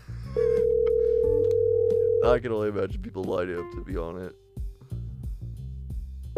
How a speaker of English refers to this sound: I'm waiting for the call to go through. He is not answering his phone.